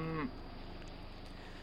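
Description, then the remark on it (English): A single short cow moo cuts off abruptly near the start, followed by a steady low background hum with no voices. “So the tribe's people pooled their resources and donated 14 of their healthiest and most prized cows to America as a gesture of sympathy.”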